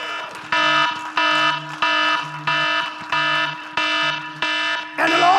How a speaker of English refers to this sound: To sound the alarm. It is a piercing in the ear. It's not supposed to be comfortable.